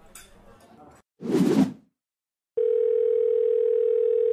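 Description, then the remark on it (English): A soft rustle and a brief swishing burst, then a phone line tone comes in and holds steady, loud and clear, as a call rings out unanswered. “He isn't answering. I can't stand when people don't answer their phone.”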